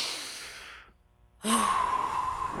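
Breathy airflow fades out, a second of near silence follows, then a stronger rush of breath returns as a group of people inhale and exhale deeply together on a count of three.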